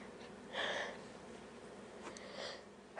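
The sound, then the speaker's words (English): A short, breathy sneeze bursts out early on, followed a couple of seconds later by a softer sniffling exhale, both fairly quiet with no talking. “Bless you.”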